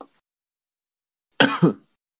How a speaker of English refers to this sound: What was that? I'm sorry, I'm suppressing a cough.